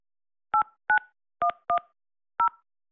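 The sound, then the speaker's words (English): Five crisp phone keypad tones beep in an uneven sequence as a 5-digit zip code is entered on an automated Cox customer phone line, each a short dual-pitched electronic blip, loud against an otherwise silent background, with no talking. “Please enter your 5-digit zip code.”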